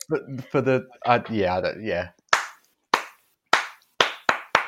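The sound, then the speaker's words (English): A voice speaks briefly, then stops. A slow clap follows: six sharp, loud single handclaps, spaced widely at first and then coming faster, with no other sound between them. “And the slow clap turns into an eruption.”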